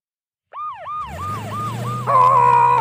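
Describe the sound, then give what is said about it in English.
A fire truck siren, used to drive mice away, starts abruptly with quick, repeating up-and-down whoops over a low engine rumble, loud, then shifts into a steadier, brighter wail near the end. “Oh, dolls, let's use the fire truck to drive the mice away.”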